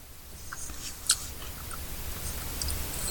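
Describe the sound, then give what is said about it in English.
Crisp crunching of food being chewed, with a series of brittle snaps and crackles over a low background hum, one sharper crunch standing out near the middle. “Oh my God, I hear the crunch.”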